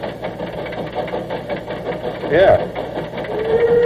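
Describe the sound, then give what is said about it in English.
The steam locomotive the General, on a record issued by the Louisville and Nashville Railroad, runs with a steady, rhythmic mechanical chugging and rumble, a brief rising tone partway through and a sustained whistle at the end, while a voice briefly speaks over it. “This is, by the way, the only authorized record of the actual sounds of the General.”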